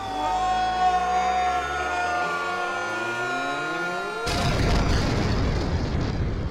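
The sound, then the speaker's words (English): A steady, rising whine of layered tones builds for about four seconds, then cuts off abruptly into a loud, roaring explosion blowing up a wrestling ring, with a rumbling, noisy blast that carries to the end. “Blowing the ring up.”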